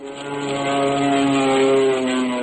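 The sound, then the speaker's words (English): A propeller airplane drones steadily overhead, its engine hum loud and continuous with a rich, buzzing tone that swells slightly midway and holds, with no voices present. “2 days later, we were soaring in the sky.”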